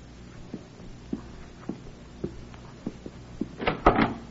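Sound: front door being opened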